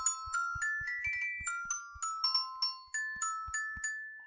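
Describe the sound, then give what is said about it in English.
A short, bright improv theme jingle for a games segment, with bell-like chiming notes forming a bouncy melody over a steady, low thumping beat, lasting about four seconds with no one talking. “That was, of course, the improv theme for games.”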